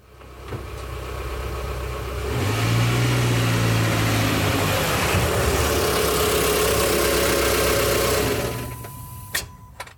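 A car engine idles, then revs up louder and holds a steady driving rumble for several seconds before cutting out, followed by a couple of sharp clicks. No one speaks.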